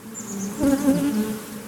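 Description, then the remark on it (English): Honeybees buzz steadily at a beekeeper's hive during their dance, a low droning hum with a few louder pulses midway, no voices present. “You can hear the dance. The dance, it's kind of, it happens like in a little circle, and you'll hear bzzz, bzzz, bzzz, bzzz, and it's different patterns depending on how far, but it's very distinct.”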